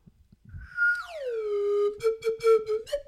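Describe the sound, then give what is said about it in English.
A professional G slide whistle swoops downward in pitch, holds a steady low note, then warbles in a few quick fluttering pulses. It is fairly loud, with no talking. “Maybe you should use the G slide whistle.”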